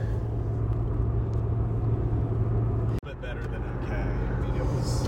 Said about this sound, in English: All right, we're back. Time warp. Time warp. Yeah. We're in the truck on the way back home